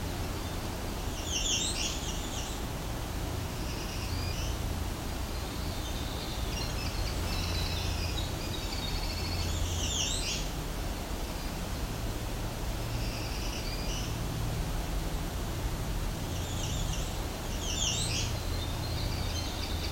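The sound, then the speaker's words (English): A black-throated green warbler sings a short, high buzzy phrase three times at spaced intervals, over a steady hiss of background noise with fainter chirps in between. “Now back to our black-throated green warbler.”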